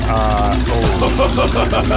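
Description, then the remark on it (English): A Porsche sports car with a titanium exhaust growls loudly, its deep, bassy exhaust rumble swelling and shifting in pitch as it revs for a couple of seconds. “It's a titanium exhaust.”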